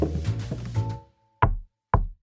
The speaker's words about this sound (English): a knock at the door.